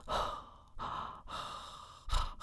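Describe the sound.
Someone imitates heavy breathing right up against a microphone: four loud, rough, airy breaths in steady succession, with a boomy low rumble on each one from the close mic.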